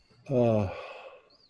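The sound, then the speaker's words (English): A voice imitates a single snore of a man in drunken sleep: a short, fairly loud, throaty voiced rasp that drops in pitch and then trails off into a soft breathy exhale. “He's drunk asleep. Okay. Snoring away.”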